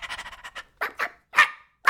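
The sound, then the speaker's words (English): A man's voice imitates a dog barking, the way he once did playing a dog in children's theater: a quick string of short yaps, then several louder, separate woofs with brief pauses between them. “I played a dog. They dressed me up like a dog, you know? Bow, wow, wow, and woof, woof, woof, and this is how I talk.”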